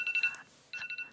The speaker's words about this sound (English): Not my alarm coming off. Sorry that scared you guys.